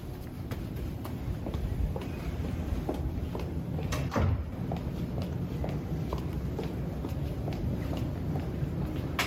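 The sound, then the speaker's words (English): Doors of a brand-new elevator in the tallest building in Platte County slide with a steady low rumble, a few soft knocks and one louder clunk midway, over constant mechanical hum and no talking. “And a brand new elevator and doors.”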